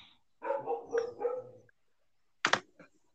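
A dog lets out a run of whiny, yelping barks, pauses, then gives one sharp bark followed by a short yip. The barking is moderately loud, with no talking.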